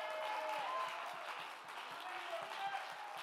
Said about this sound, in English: Oh, let's clap our hands and give God great praise. Come on, somebody. Give him the glory. Give him the praise.